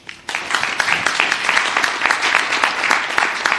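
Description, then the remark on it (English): A live audience breaks into steady applause welcoming two guests after a brief quiet moment, many hands clapping in a dense, sustained patter that holds at an even loudness to the end, with no one speaking. “So a big warm welcome to both of them.”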